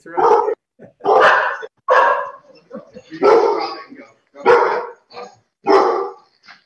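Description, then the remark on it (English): A dog barks loudly in a working shop, about seven sharp barks in an uneven rhythm with brief pauses between them, plus a few softer yips in the gaps. “The dog's it's a working shot, guys.”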